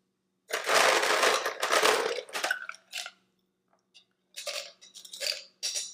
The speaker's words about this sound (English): So we're going to start with a little bit of ice poured into our glass right here.